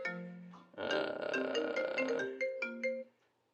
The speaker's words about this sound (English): Oh, and now I'm getting a phone call. Great. This is a great time.